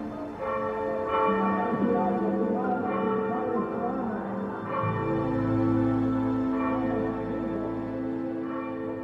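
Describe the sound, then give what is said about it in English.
Church bells ring out in a sustained, overlapping peal in Mexico on Mother's Day, May 10th, for a special church service, with strong resonant tones layered over a dense background murmur that may include voices. “And I could hear the bells.”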